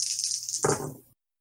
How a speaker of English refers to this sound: I want you to roll. Yeah. Willpower or might, whichever one you choose. They're both 3 dice.